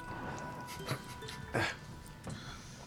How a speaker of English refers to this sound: Oh, there's a dog.